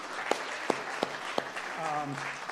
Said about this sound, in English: Before we go any further, can we just give an applause to honor our worship team this morning, you guys?